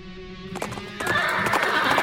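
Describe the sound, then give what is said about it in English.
A horse neighs loudly over the steady clip-clop of hooves, the whinny rising and fluttering while the hoofbeats keep a brisk rhythm. No one speaks. “Hold your horses and pull your carriage to the side of the road.”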